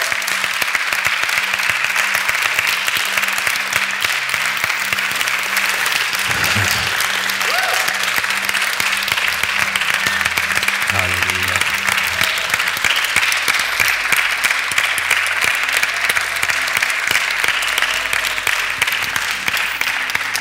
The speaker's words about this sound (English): Can we just give the Lord a hand clap of praise?